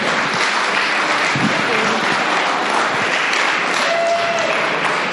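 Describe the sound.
Steady, dense applause from an audience at a storytelling event, welcoming the next storyteller, a broad wash of clapping holding at an even, fairly loud level for several seconds, with faint voices mixed in.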